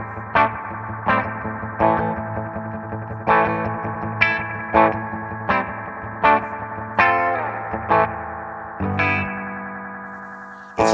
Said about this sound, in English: Loose spring, spring reverb. Almost like when you kick the amp. Oh, self-oscillating. Interesting.